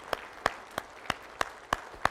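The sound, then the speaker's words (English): Standing men clap for their mothers and wives: steady, rhythmic clapping of about seven sharp, crisp claps evenly spaced roughly a third of a second apart, with quiet gaps between them and no voices. “So give your moms or wives a big hand this morning, guys, if you will.”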